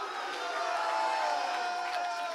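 An audience shouts hallelujah and cheers together, a steady wash of many voices that stays loud and unbroken from start to finish with no single voice standing out.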